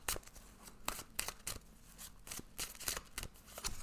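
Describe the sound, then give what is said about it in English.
Papery swishes and soft snaps of tarot cards sliding against each other as cards are pulled from the deck for a three-card reading, repeating in a loose irregular rhythm for a few seconds, with no one talking. “I'm going to pull the other cards before I start reading this.”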